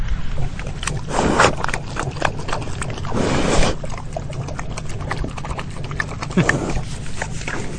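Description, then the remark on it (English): Pigs munching on lettuce, with wet crunching and chomping sounds in an irregular rhythm, a few louder bursts of chewing standing out against steady outdoor background noise. “Likes that lettuce.”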